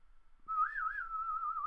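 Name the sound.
human whistling a melody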